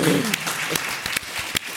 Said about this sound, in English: By round of applause, who wants to go on the Galactic Star Cruiser?